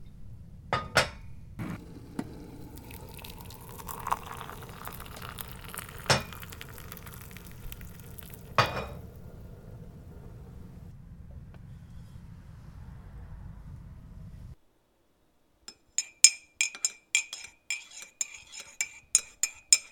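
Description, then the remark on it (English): A spoon stirs in a mug, giving a quick, uneven run of bright, ringing clinks. Before that comes a stretch of steady rushing, bubbling noise with a few sharp knocks. “While you're doing all that, keep an eye on your water, and once it boils, drop everything in the mug and top off with your favorite sweetener.”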